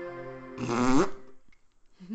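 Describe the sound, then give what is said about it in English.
One loud, buzzy fart rips out for about half a second and ends with a rising squeak, followed by a brief pause and a short murmur of voice. “And all you hear is...”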